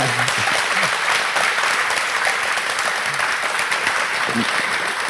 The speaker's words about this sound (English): can we get a round of applause for David Wise and Grant Kirkhope?